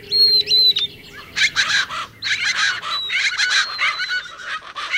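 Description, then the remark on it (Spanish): Winter birdsong in the subtropical Lower Rio Grande Valley of Texas, on the US border, where birds common in Central America reach their northern range. Several birds call: a few clear high whistles open, then loud, raucous, rasping calls repeat in rapid overlapping bursts, with sharp chirps scattered among them. “Y aquí, las aves que comúnmente se encuentran en América Central llegan a su rango norte más extremo.”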